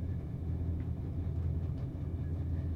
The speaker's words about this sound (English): You can hear it vaguely. Mm-hmm. I love that sound of a train, that chugga-chugga-chugga. It's so relaxing. Yeah, it is.